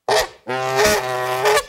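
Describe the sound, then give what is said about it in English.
A Canada goose named Sneakers honks twice: a short, sharp call followed by a long, drawn-out nasal honk, loud and harsh with no talking. “Sneakers here is a Canada goose.”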